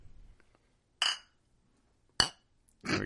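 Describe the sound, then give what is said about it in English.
Glasses clink together in a round of cheers three times, each a bright ringing chime spaced about a second apart, fairly loud with quiet gaps between and no talking. “All right, we're going to do the round of cheers again here so we can...”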